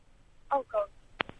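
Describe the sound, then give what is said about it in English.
A caller's voice on a phone line breaks up into two brief, tinny, garbled fragments, followed by two sharp clicks as the connection drops out. “gone funny on the phone”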